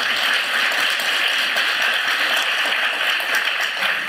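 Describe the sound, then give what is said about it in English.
An audience at a live stage event applauds a guest speaker in a dense, steady wash of many hands clapping at once, holding an even loudness for about four seconds without fading. “Okay, yeah, round of applause for Sally.”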